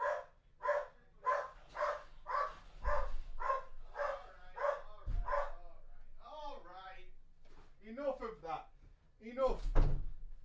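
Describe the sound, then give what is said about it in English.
A door thuds open and shut a couple of times as a delivery person arrives at the door at 4 p.m., while a dog barks rapidly and repeatedly, followed by voices talking. “There's a fucking guy at the door.”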